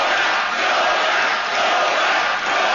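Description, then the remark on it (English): A large crowd at a Donald Trump rally chants "Nobel" in unison, a dense, loud roar of many voices with gentle rhythmic swells, steady throughout with no single voice standing out. “This is the crowd's chanting Nobel.”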